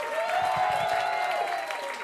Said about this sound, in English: And spread the applause to all over the room.